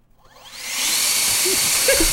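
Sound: leaf blower running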